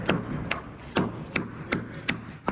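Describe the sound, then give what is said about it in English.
During a protest, a hammer drives a chisel against a window of Barclays HQ in a steady series of about seven sharp, ringing strikes. Each is a clear metallic crack, spaced roughly half a second apart, moderately loud. “It's like, you know, you're using a hammer and a chisel on a window.”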